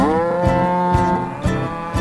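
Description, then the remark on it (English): A long, steady cow moo holds for about two seconds over rhythmic backing music, with a soft percussive beat landing roughly every half second beneath it. “Chickens, horses, and cows that go”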